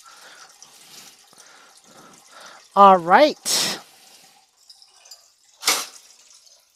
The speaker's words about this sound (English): So right now I'm just filling this pot up with water.